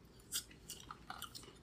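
Crisp crunching of someone chewing kimchi, Korean sauerkraut made with Napa cabbage, radishes, spices and peppers: a few sharp bites followed by softer wet munching over about two seconds, with no talking.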